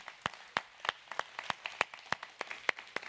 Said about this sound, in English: So can we give our first-time guest a big welcome with a hand clap?